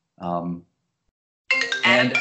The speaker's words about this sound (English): My phone's ringing.